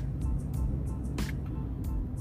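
Steady low rumble of a car interior while driving, a constant road and engine drone with a few brief hissy bursts rising over it now and then.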